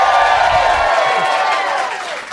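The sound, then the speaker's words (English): A live theater audience at the UCB Theater in New York City, during the 13th annual Del Close Marathon at 12:30 a.m. on Sunday, August 14th, 2011, cheers loudly with many high-pitched whoops and shouts over a wash of clapping, holding steady for a couple of seconds before easing off slightly at the end. “Sunday morning, August 14th, 2011, and we're in front of a live audience at the UCB Theater in New York City during the 13th annual Del Close Marathon.”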